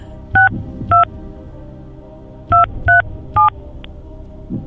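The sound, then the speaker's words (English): Five short, distinct telephone keypad tones beep as a phone number is dialed, in an uneven sequence, two then a pause then three, each a clear dual-pitched chirp over a low background hum. No voices are heard. “Now we're going to ask Tyler Carr to do his best dialing there.”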